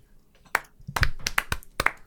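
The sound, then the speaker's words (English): Several sharp hand claps in an uneven rhythm, a single clap followed by a quicker run of four or five, bright and fairly loud, with no voices. “Love the clap.”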